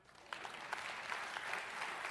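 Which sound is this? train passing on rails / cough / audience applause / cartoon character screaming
audience applause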